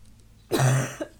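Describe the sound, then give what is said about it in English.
A woman who is ill lets out a harsh cough, followed a moment later by a smaller second cough, with no talking around it. “She says after coughing up a lung.”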